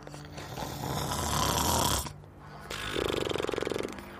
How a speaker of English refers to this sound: He folded his wings and coiled up on the sand. Then he began to snore.